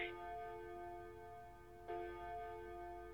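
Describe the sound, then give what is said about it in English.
A clock ticks, two sharp metallic strikes roughly two seconds apart, each leaving a ringing resonance that hangs in the air. No one speaks. “Next time we do this, that clock is going in the garbage.”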